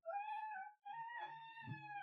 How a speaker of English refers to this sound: She's an incredibly noisy cat. She is. She didn't used to be. Her brother died, and then she found her voice, and her voice is so loud and so weird. So let's see if being on my lap keeps her quiet. It sounds like a tiny siren.